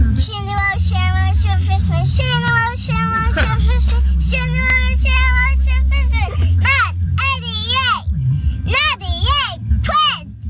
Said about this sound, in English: 2 or 3 year old kids singing the Shenderovich and Fishman lawyer jingle that we made